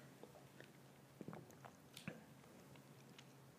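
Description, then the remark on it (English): Quiet sipping of a thick Jamba smoothie, with a few soft wet slurps and mouth clicks spaced irregularly over a low steady hum, no talking. “I'm going to sip this Jamba, though.”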